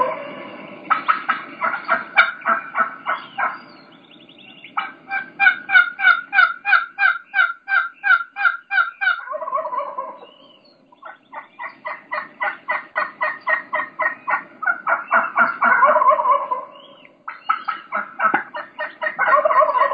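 Wild turkey hens yelp in long, rapid strings that keep getting longer, mixing in more sharp clucks and fast, excited cutting notes, loud with no one talking.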